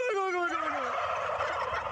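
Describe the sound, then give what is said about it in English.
Turkeys gobble loudly, a falling warbled call dissolving into a dense, rattling chorus of gobbles that carries on for the full two seconds without pause. “Finally today, copycat turkeys. This guy knows how to talk turkey.”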